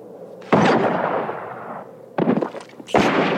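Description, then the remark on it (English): Three loud, booming gunshots from a movie gunfight, each followed by a long rumbling echo; the first tail lingers before two more blasts come in quick succession. No one speaks. “Sniped in the head. Gun battle.”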